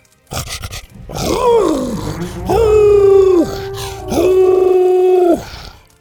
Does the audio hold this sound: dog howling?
yes